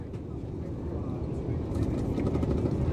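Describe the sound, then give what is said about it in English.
A heavy, droning engine roar rumbles low and steady, gradually swelling louder as an airplane bound for Costa Rica powers up for takeoff from Hartsfield-Jackson Airport, heard with muffled cabin noise. “To the gate, board the plane, and I'm off into the sky.”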